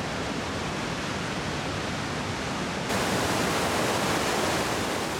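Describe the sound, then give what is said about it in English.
A steady, full roar of the Tuolumne River rushing down granite cascades downstream of Tuolumne Meadows, continuous, with the rush jumping noticeably louder about halfway through. No voices are heard. “So these two amazing forks converge right in Tuolumne Meadows, and they flow and meander peacefully through the landscape until they start to tumble down incredible granite escarpments.”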